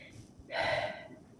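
A single person yawning: a drawn-out, breathy inhale that swells and fades over about half a second, moderately loud, with no talking.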